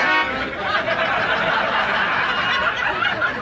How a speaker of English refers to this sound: Today, I was rudely interrupted in the middle of my afternoon nap by this guy honking his horn behind me.